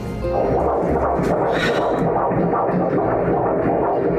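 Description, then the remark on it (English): A baby boy's fetal heartbeat on an ultrasound monitor: a fast, steady, whooshing throb that pulses rapidly and loudly through a muffled, rumbling background, with no one talking. “Let's hear his heartbeat.”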